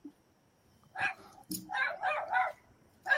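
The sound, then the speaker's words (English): A small dog inside a house where nobody seems to live barks several times in a quick, uneven series, the barks sharp and fairly high-pitched, with a brief pause before the first burst. “Yeah, that dog does not belong in there.”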